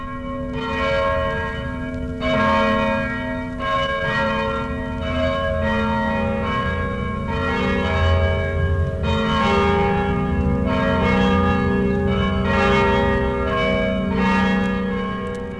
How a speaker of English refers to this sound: And as an introduction into the church, the bells played extensively for upwards of 15 minutes. And this is a small caption of those 15 minutes that were on display that day.